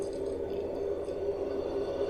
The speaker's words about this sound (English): Like, emptying the water out of the ear and... Wow. Yeah.